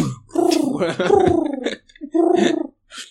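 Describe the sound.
A person imitates a pigeon's cooing with warbling, throaty vocal sounds: one long rolling coo, then a shorter one after a brief pause, and a small final sound, fairly loud.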